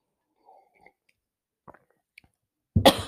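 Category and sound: food or drink, sipping tea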